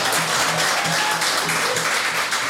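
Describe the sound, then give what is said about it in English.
An audience applauds steadily, a dense, crackling wash of many hands clapping at once that holds at an even, fairly loud level throughout, with no voices over it. “And I want to give everybody in the audience, please give yourself a round of applause.”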